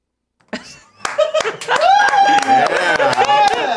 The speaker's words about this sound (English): Everybody's been getting rounds of applause when they come in today. It's been great.